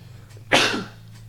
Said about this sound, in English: Anyway, it's kind of, I got a sneeze coming. Oh shit.